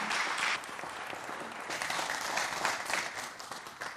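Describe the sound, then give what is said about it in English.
An audience at Calvary Restore church claps steadily for a few seconds for a speaker coming up to share that morning, a dense, sustained wash of many hands filling the room at moderate volume, with no voices standing out. “And so give him a round of applause as he comes up and shares with us this morning.”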